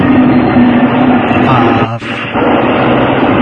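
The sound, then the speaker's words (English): A loud, steady roar of a train passing outside a window, heard with the windows closed, fills the whole recording, a dense rumbling wash with a brief dip partway through before the noise surges back. “waiting for the train”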